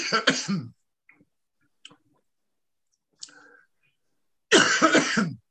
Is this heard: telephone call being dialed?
no